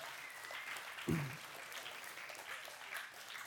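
A crowd applauds with steady, dense clapping that holds at an even level for the whole stretch, broken once by a single dull thump partway through.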